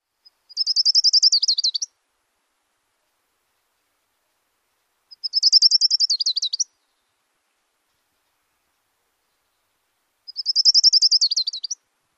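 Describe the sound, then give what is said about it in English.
An orange-crowned warbler sings its high, rapid trill three times, each burst about a second and a half long, spaced by several seconds of silence, clear. “A mnemonic for the orange-crowned warbler is chee-chee-chee-choo-choo-choo, which reminds us of that two-part feeling.”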